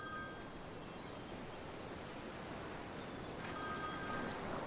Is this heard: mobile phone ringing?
yes